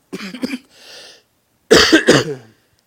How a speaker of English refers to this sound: This is going to be a tough sermon to preach with a cough. You'll have to say amen when I pause.